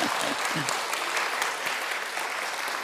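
A crowd applauds, a steady dense patter of many hands clapping at an even volume for about three seconds, with a faint voice or two briefly audible beneath it near the start.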